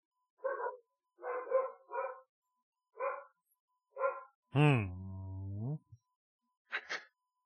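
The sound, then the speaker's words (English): A person imitates a dog, giving a string of short yapping barks, then a long drawn-out whining howl, followed by one last quick bark. “You turned into a dog.”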